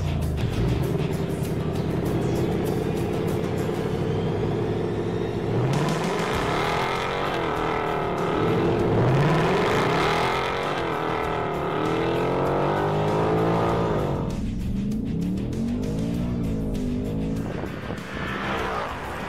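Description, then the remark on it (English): A Ford Mustang Dark Horse and a Mustang GT drag race side by side from a dig, loud V8 engines roaring and climbing in pitch through several rapid upshifts, with a brief tire squeal near the start and no talking. “So from a dig, Dark Horse on the left, GT on the right.”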